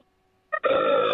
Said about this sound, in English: Is he just going to burp? Are you from the Burpiverse? Is that what's going on?